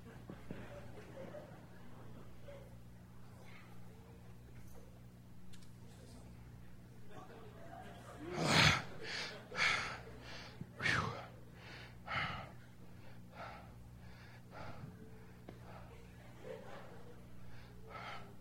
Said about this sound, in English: I'm breathing.